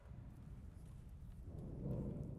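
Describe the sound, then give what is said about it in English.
Low rolling thunder rumbles steadily, swelling somewhat louder toward the end. It's a quiet, deep roll with no voices present. “I mean, the reason I said aside from the thundering that happens on a regular basis, which you guys did not even flinch, by the way.”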